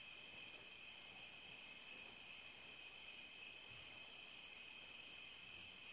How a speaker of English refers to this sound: Yes to the blue sky. The crickets chirping now.